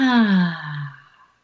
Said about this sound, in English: So we're going to take a big breath in together now. And releasing out.